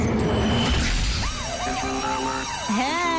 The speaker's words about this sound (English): Hey, you know what? I was hoping for that alarm just then.